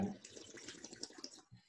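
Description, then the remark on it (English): Champagne pours into a Vera Wang champagne flute in a short burst of fizzing, gurgling liquid that runs steadily for over a second, then trails off. “As well as pouring a lot on me, I've had quite a lot of it to drink now.”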